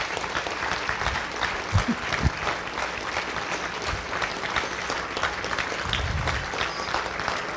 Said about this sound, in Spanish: ¡Aleluya! Regálale un aplauso al Señor si usted quiere.